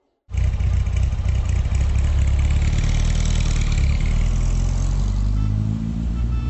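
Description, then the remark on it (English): A car engine starts abruptly and runs steadily and loudly as the car races through the city, a low mid-pitched rumble with faint clattering, holding an even drone throughout with slight shifts near the end. “So you get in the car and you race through the city.”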